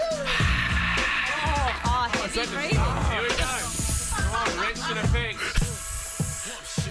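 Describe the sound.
A snake hisses in sharp, breathy bursts, loud, tangled with wavering voice-like tones and a busy, cluttered background throughout.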